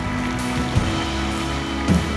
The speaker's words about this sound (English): Hey, come on, keep clapping. They're still coming from everywhere. Wow.